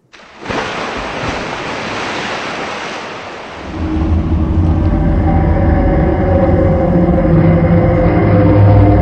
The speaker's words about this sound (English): but no sooner had they cleared the two sand spits that sheltered the bay entrance than a terrible roar erupted from the sea behind them.